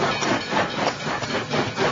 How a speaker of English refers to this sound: When such vapor as rose to my height from this rapid train had passed me